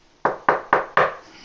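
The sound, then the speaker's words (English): Four firm knocks on the door of a house in a steady, evenly spaced rhythm, fairly loud, each with a short hollow ring-off, followed by quiet. “You can just knock on the door.”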